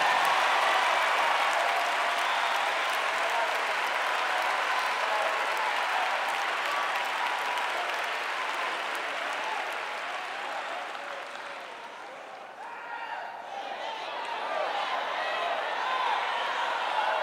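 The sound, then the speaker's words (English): An audience at a sermon claps steadily for about seventeen seconds, at the preacher's request, a dense, even wash of many hands that dips briefly in loudness before swelling again. No one speaks over it. “If anybody understands the flow of my thought, clap your hands as a sign to me you get it.”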